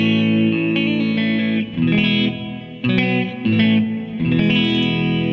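Electric guitar played through a Flint reverb pedal set to a basic, normal reverb plays sustained chords with a gentle, subtle reverb tail, strummed in a few phrases with brief dips between them, moderately loud with no voices.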